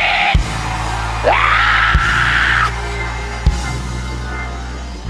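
A large crowd erupts in loud, sustained screaming and yelling in response to a preacher's call to scream, a dense roar of many voices with a swelling shriek in the middle, heavy low rumble and occasional thumps underneath.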